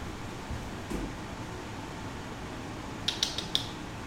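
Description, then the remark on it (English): An air conditioner runs with a steady, low whooshing hum throughout, while a few quick mechanical clicks sound near the end. No one speaks. “I got so pulled out of it by the air conditioner.”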